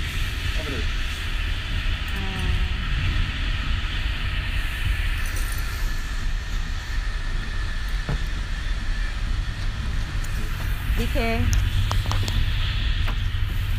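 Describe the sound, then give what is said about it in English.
Steady rumble and hiss of a moving train carriage during a ticket check, continuous throughout, with brief muffled voices speaking now and then over the engine noise. “Okay, so I just valid my ticket on the train.”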